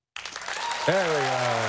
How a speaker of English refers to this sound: I'm applauding for you. Press the applause button. You deserve it,